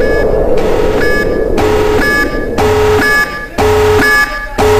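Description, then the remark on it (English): Loud electronic beeps marking a short six-second break repeat in a steady rhythm, about one per second, each a harsh buzzy tone with a rough, noisy wash between them. No one speaks. “So we're going to take our little 6-second blah, blah, blah, so we can hear the beep, beep, beep.”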